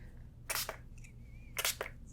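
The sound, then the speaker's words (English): Two short, breathy hisses of a spray bottle misting cool water onto a face, each a quick double burst, fairly soft, with a faint tonal hum between them. “What I'm gonna do is just spray your face down a little with this cool water.”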